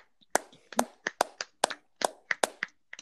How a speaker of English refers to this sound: A pretty sad clap. I gave a good clap. I was clapping. I don't know if everyone else was. I was clapping. We're all clapping into earbuds right now, which definitely limits the effectiveness, yeah.